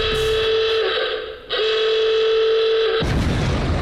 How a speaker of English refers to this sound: There is a timer. We don't know how long's on it or when it runs out. And if you haven't stopped and the timer goes off, you lose everything. Everything. And you will know when that time is up because you will hear this noise.